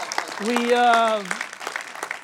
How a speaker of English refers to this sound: And we've been married 8 years. And it'll be 9 years next February. So give us a hand clap for that.